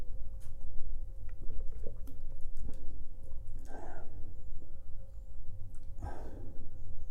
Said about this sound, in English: Now I'm thirsty now. So my throat might swell now because I'm drinking cold water.